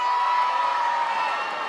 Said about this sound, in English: Who else shouted there? Where are you from?